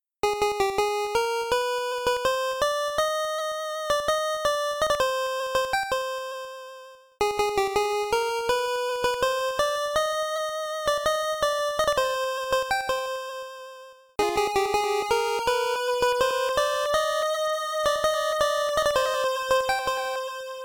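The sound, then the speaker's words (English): A bright chiptune melody of quick square-wave notes plays three times: first alone, then with an echo added on channel 3 of the 5B chip, then also with a more delayed echo on channel 1 of the 2A03, with short gaps between passes. “To demonstrate this, you'll hear the first part by itself, then again with the first echo added on, and then again with both voices.”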